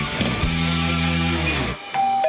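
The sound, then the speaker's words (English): A house doorbell rings with a loud two-note chime that sustains for over a second before cutting off, followed by a thin, steady high tone, in a Scottish Building Society radio advert. “Do you hear that? That's your family coming round to your new house for Sunday lunch.”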